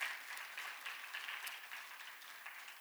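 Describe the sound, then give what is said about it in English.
A church audience applauds, giving Jesus a round of applause, in a steady, dense wash of many hands clapping at once, holding at an even level for a few seconds and easing slightly toward the end. No voices are heard. “And so I want you guys just to give Jesus a big, huge round of applause.”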